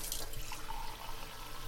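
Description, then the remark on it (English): Water runs steadily from a tap into a glass, a continuous splashing stream with a faint rising tone as it fills, heard alone without any voices. “Just a little glass of water, and then right to bed”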